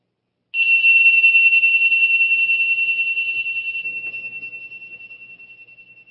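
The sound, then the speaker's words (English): A meditation bell is struck once to end a meditation, giving a clear, high ringing tone that hums with a gentle wavering pulse and slowly fades over several seconds. No one speaks. “Now we'll end the meditation with a soft ringing of the bells.”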